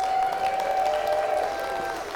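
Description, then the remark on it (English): A church crowd cheers and applauds steadily for those watching online, with dense clapping under sustained whoops and a high, ringing tone that holds through most of the burst. Loud and continuous for about two seconds. “Hey, cheer for those online today.”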